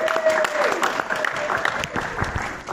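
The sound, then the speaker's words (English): A room full of people claps in a steady, dense round of applause lasting a few seconds, with a faint tonal whistle or squeak briefly rising above the clatter near the start. “Round of applause”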